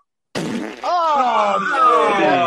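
A single long, drawn-out fart sound, loud and close, starting abruptly with a sputtering rasp and then settling into a steady, buzzing, slightly wavering tone for about two seconds.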